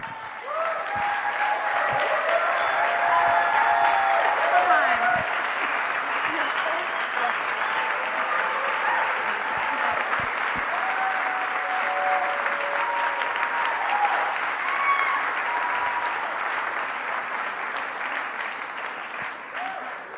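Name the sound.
audience clapping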